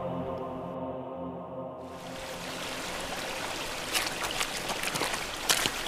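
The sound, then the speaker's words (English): Steady rushing water of the River Sidon, with a few sloshing splashes of footsteps wading through it, growing clearer toward the end. A low hum fades out at the start; nobody speaks. “Footsteps sloshed in the River Sidon's water.”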